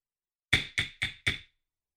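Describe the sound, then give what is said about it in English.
A gavel bangs four times in quick, evenly spaced succession, each sharp wooden strike ringing briefly before the next, with silence before and after. “Bang the gavel.”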